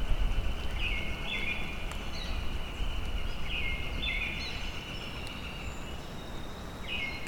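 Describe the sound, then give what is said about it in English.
A northern flicker calls in bursts, each a slightly rising, ringing phrase, spaced a few seconds apart, over a steady rush of outdoor background noise. “Northern flicker.”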